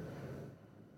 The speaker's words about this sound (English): So yeah, who have we got flying over? Oh, let's see how good your plane spotting skills are today. Which way is it going first? I think it's going north.